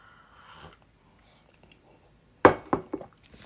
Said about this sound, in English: Take a sip of this coffee.